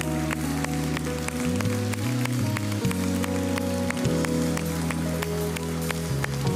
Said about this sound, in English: Just give them a big round of applause.